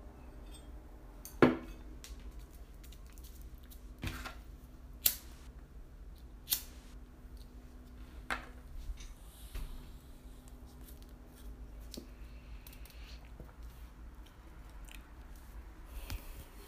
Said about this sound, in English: 1 second, I'm going to drink some water and take a little break.